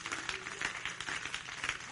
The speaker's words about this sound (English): In Jesus' name, let's clap our hands and praise to the Lord.